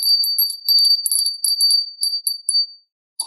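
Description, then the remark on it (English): A small, high-pitched bell is rung rapidly and continuously for nearly three seconds, tinkling, then a few spaced strikes trail off into silence. “I'll try ringing it for you and see if it does that.”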